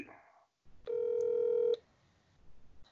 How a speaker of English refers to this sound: I do think that we're getting a call now.